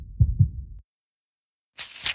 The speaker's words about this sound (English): And my heart would be beating so fast. It would be louder than thunder.